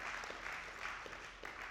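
An audience claps in a steady, dense patter of many hands, a broad crackling wash of applause with no voices, holding at an even moderate level throughout, applauding the news that a building was bought without taking out a mortgage.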